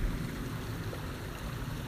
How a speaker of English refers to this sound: The creek is flowing. We've had quite a few storms in the last week and a half.